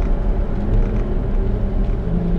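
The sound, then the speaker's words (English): A steady, low road rumble inside a moving car with two children sleeping in it, loud and continuous with a deep droning hum and faint whir above it, no voices present. “For me personally, for these two guys who are sleeping right now in the car, like, I've accepted the fact that I'm not going to be a perfect parent.”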